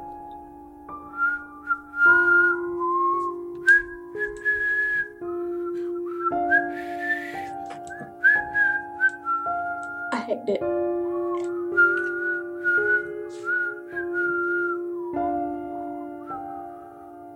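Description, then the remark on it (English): A man whistles a meandering tune, coming from one of the showers at the south end of a hall, for several seconds, the melody wavering and slightly off-pitch, with a steady low tone underneath and a brief spoken remark partway through. “We have a poor whistler. Whoever it is, he's not very good at whistling.”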